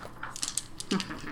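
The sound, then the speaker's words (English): Dice clatter across a hard tabletop in a quick burst of sharp, rattling clicks that bounce and settle within about a second, moderately loud. “Oh, you need more dice.”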